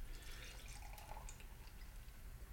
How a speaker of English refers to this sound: That being said, I'm pouring a fucking glass. Are you ready to get a glass of this?